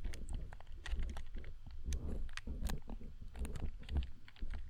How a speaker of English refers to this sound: I'm just going to be clicking some buttons for you, baby.